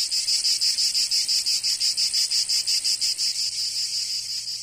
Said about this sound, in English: Cicadas? Cicadas.